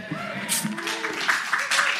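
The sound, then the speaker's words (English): Scattered audience clapping for a woman, a few sharp bright claps in uneven bursts, mixed with murmuring voices and a rising vocal sound over a steady crowd hum. “I think it's really encouraging that you can hear people in the audience clapping for her.”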